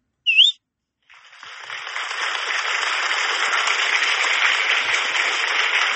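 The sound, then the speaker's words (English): A single short, bright human whistle with a quick upward bend, then after a brief pause a steady wash of applause-like noise that continues to the end. “That was a whistle?”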